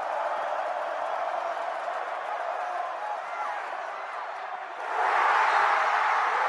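A huge college football stadium crowd of North Carolina State Wolfpack fans roars continuously after beating the Clemson Tigers by a touchdown, a dense, sustained wash of cheering that swells even louder near the end, echoing.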